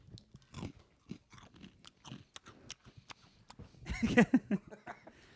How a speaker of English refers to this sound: These smell so sour. So smell them. Sour for breakfast? You smell that? Chew them like into the mic.